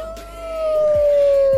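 A wolf gives one long, sustained howl that swells louder and sags slightly in pitch, with no one talking over it.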